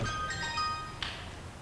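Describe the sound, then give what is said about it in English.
A brief melodic electronic tune from a phone, like a ringtone or notification, plays a few bright tones for about a second before cutting off, over a low background rumble. “Was that my phone? Must have been.”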